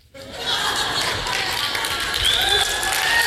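An audience bursts into applause, dense, steady clapping that starts abruptly and holds at full strength throughout, with faint cheers and a few whistle-like tones mixed into the crowd noise.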